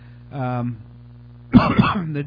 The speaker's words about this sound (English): I'm coughing too. Let me tell you, I had to get over a pretty bad cold, and it has been rough.